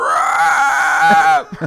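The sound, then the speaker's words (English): A human voice imitates Grimace letting out an eerie, wavering, hallowed screech, loud, sustained for over a second with trembling pitch before breaking off into a few short breathy sounds. “Grimace lets out a hallowed screech.”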